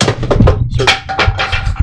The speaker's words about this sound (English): I just broke a chair. Well, that'll lighten it up a little bit.